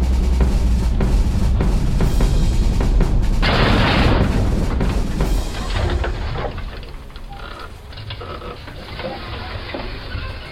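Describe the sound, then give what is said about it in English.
Rapid bursts of gunfire, getting closer, crackle over heavy low rumbling and booms, loud and dense at first with a harsh blast midway, then settling into a softer, continuing battle din. “Listen, gunfire. You're right. And it's getting closer, too.”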